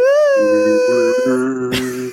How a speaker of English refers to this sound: Oh, I do love the sound of cats at the end of a song. Absolutely. It's the best way to finish a song.